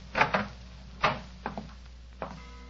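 A door leading to a bedroom is opened: a few short wooden clunks and rattles of the latch, spaced irregularly over a couple of seconds, with no voices.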